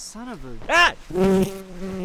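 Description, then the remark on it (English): A small black and orange honeybee buzzes around a person's head on a riverside trail after stinging them, in several quick passes, its droning pitch swooping up and down as it circles the eyes and ears, then settles into a steadier hum. “You jolt backward as the small black and orange honeybee zips around your head, buzzing your eyes and ears.”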